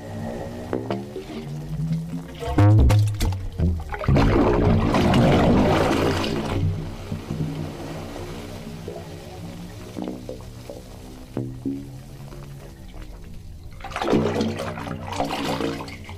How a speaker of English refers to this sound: So as the tide comes in, the sound waves travel through this pipe and create this music that comes out of the pipes while you're just like sitting there listening to it.